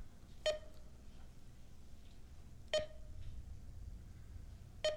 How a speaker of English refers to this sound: Pull it up. Let's take a look. There's a computer beeping.